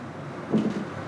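An apartment door rattles briefly in its frame in gusty wind, a quick cluster of soft knocks and clatter rising out of a steady low background rush, then settling again.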